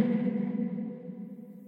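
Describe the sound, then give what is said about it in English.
A voice imitates a long reverb tail, holding a low, steady hummed tone that fades gradually over almost two seconds, with no words spoken. “That's why I do the whole kind of long virtual reverb tail thing.”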